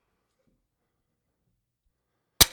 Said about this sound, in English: And then you hear a sledge come down on the cross and Christ screaming out in pain.